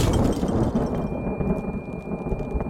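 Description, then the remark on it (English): A massive roll of thunder booms, a deep, loud rumble that sustains for the whole stretch with crackling texture on top and no voices. “He was manning a registration center at a Shenandoah campground when a sudden massive clap of thunder momentarily deafened him.”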